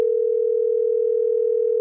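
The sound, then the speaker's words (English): A steady, continuous telephone dial tone hums at an even volume for the full length, a single unbroken pitch with no voices or other sounds, as B98.5 radio hosts place a call. “We're going to get Rob on the phone.”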